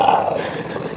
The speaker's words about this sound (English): He's going to start growling.